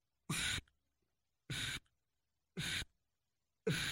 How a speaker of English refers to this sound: So I'm going to play it through the call backwards, and you'll be able to hear the way the air is actually coming through the call.